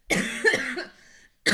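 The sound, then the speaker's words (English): A harsh, raspy cough drags on for most of a second, trailing into a wheezy rasp, then a second cough bursts out sharply after a brief pause. “You hacking for 12 minutes.”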